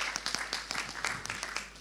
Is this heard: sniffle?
no